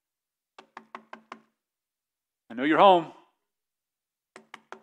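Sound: knocking on a door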